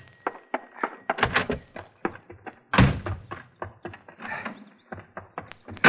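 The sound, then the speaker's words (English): A rapid, irregular series of heavy thumps and bangs as someone locked in a living room pounds and slams against the door, breaking out, with a few especially loud blows among the quicker knocks. “I have him locked in the living room, but he's breaking out.”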